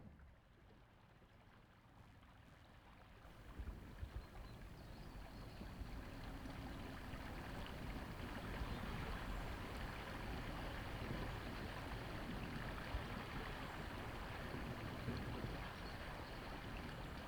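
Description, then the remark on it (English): A loud river rushes steadily after 4 o'clock in the morning in a dense, continuous roar of water, swelling slightly after the first few seconds and then holding constant, with no voices present. “But the river is so loud, so very loud.”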